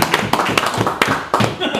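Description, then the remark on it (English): A short burst of applause: a handful of sharp claps in an uneven patter for a couple of seconds, with voices murmuring underneath. “Let's give it a round of applause.”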